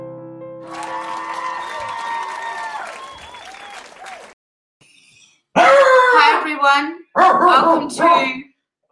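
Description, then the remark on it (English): A dog barks loudly, firing off two quick bursts of several sharp barks, preceded by a quieter stretch of wavering, whiny tones and a short pause. “I'm just going to leave you with everyone on my dog barks.”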